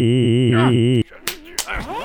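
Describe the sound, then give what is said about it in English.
A steady, wavering tone ends abruptly, then two sharp, loud slaps land about a third of a second apart, followed by a brief voiced sound, as two men, one of them quadriplegic, have a scrappy slap fight. “Stop slap fighting with the quadriplegic man!”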